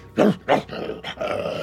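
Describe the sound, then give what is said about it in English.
A voice imitates the growl of a creature that notices something: two short, harsh bursts followed by a longer rasping snarl, fairly loud, with no other talking. “Well, one of them notices and growls.”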